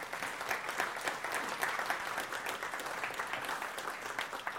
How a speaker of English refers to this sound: And let's give him another round of applause for being here.